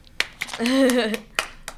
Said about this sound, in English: Ooh, I wish I had more people in here to clap with me.